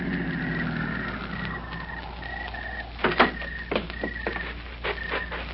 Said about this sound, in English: Uh-oh, there's the medic's car. Ah, good. Pull in behind it,